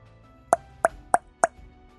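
Four quick, hollow plops of a tip being dipped into holy water, evenly spaced in a steady rhythm, each short and bright over a quiet background with no talking.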